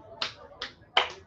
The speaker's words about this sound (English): A little round of applause right here, my friends.